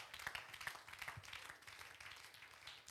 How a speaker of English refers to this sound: You got a clap for faith.